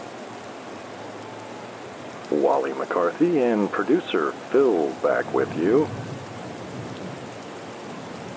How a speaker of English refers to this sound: A light rain is falling here at Evermore Field, and the grounds crew has brought out the tarp. So we are under a rain delay here in the bottom of the sixth.